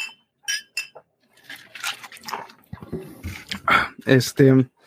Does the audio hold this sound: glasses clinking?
yes